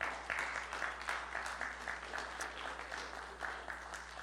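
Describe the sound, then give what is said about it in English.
An audience bursts into steady applause for the women of the church one morning. It is a dense, even wash of many hands clapping at a moderate volume with no voices over it, sustained throughout. “And maybe they all deserve a hand here this morning of applause.”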